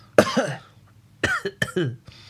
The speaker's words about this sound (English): He goes to answer, but a cough suddenly hits him.